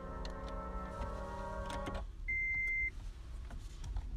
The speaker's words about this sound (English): Okay, just getting out of the car here.